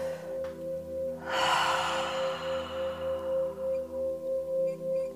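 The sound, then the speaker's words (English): A single slow, deep breath, a drawn-in inhale followed by a long, airy exhale, clear over a steady low tonal hum in the background. “Taking a nice deep breath.”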